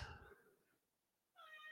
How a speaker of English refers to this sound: Hello, cat. I wondered if you could hear that.